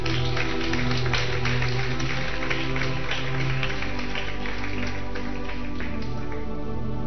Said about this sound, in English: This guy did a good job. Clap for him again.